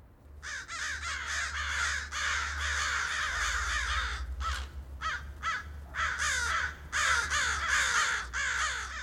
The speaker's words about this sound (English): Oh, it came by crow. What a fun but noisy way for a poem to travel.